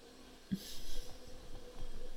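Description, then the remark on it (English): A home air conditioner makes loud noises: a steady low hum breaks into a sudden burst of hissing, rattling sound that keeps churning unevenly, with no one talking. “And then our air conditioner explodes? Our house is making some noises that probably aren't good.”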